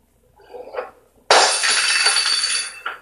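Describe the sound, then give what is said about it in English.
A sudden loud crash of dishes smashing, followed by a long bright spill of shattering and rattling ceramic shards, with a softer clatter beforehand and a final clink at the end. “Throwing dishes around, moving spoons.”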